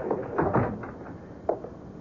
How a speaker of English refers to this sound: Shut the door behind you.